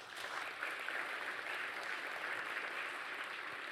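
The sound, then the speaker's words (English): An audience at Adventure Church claps steadily to welcome a guest speaker, a dense, sustained wash of many hands with no individual claps standing out, holding an even level throughout with no voices over it. “I didn't get a clap in the morning service, so thank you for that.”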